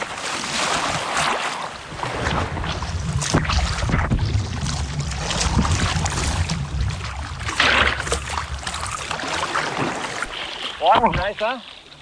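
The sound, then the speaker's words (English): Ocean water rushes and washes over the microphone while surfing, in a steady, loud churn mixed with wind buffeting, ending with a brief warbling, rising-and-falling tone. “Here comes a little bit of water”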